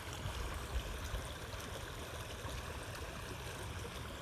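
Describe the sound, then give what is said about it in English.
Steady, continuous rush of flowing river water, a broad even wash of burbling noise with low rumbles, moderately loud, no voices. “And something like this, a river, right?”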